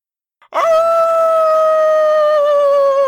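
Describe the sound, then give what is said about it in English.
A person imitates a wolf howl with their voice, head tilted up, a single loud, sustained note that holds steady and slowly sinks in pitch for about two and a half seconds. “Tilt my head up and I let out a very orc-like wolfish howl.”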